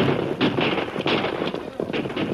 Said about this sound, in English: Now they were opposite the Wells Fargo Express office, and a dozen rifles opened up on them.